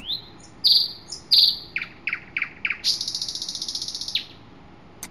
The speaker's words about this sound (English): Well, the dinosaurs were distant relatives of the modern-day birds. That was a nightingale.